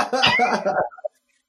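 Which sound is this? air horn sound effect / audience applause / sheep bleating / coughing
coughing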